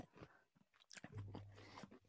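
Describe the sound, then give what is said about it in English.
Moist chewing of peanuts soaked in full-sugar Coke, with a few crunchy bites in an irregular rhythm, fairly quiet, over a low steady hum in the background and no talking. “You can't, chewing.”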